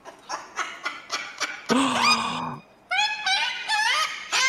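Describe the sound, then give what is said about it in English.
A cockatoo sound effect from a film: loud squawking, a run of quick harsh chirps, then one long raspy screech, followed by more rising, strident calls. No one speaks. “It's a cockatoo."”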